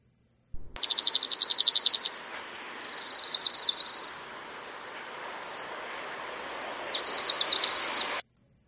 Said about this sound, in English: So that was the Orange Crown Warbler, and here again is the Dark-Eyed Junko.